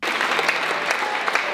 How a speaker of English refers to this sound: So because she fell out, they're all clapping and amazed, right? My goodness.